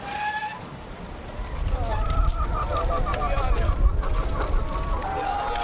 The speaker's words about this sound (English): Nor is it intended for local merchants, like this Sicilian chicken farmer waiting to truck his fowl to market.